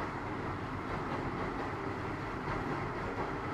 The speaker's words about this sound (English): Hey, it's the train.